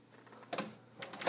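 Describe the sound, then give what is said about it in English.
An apartment door is pushed shut: a brief scrape and rattle, a pause, then a cluster of sharp latch clicks ending in a solid thud. No one speaks. “Set you down until this door is closed.”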